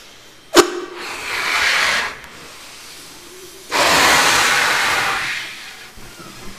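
Air is blown into a latex balloon in a church sanctuary in two long, breathy puffs with a short pause between them, the second louder and longer, after a single sharp tap at the start.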